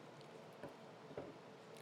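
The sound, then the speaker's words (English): Quiet mouth sounds of someone eating a sticky tortilla with peanut butter, with two soft, wet squishy chews standing out against a low background hiss and no talking. “How do you think bad. It is to listen to people eat tortillas with peanut butter on them?”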